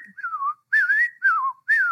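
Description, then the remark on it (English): A person whistles an imitation of robin song: four short, clear phrases that glide and waver up and down in pitch, each separated by a brief pause, with no talking. “and the very first bird calling is probably a robin as it sings its song. Well, its song is just jumbled up.”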